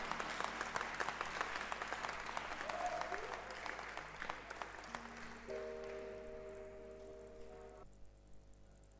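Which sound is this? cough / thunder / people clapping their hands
people clapping their hands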